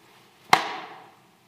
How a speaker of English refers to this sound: Every time the whip hit Jesus,